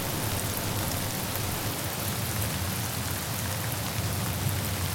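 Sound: rain falling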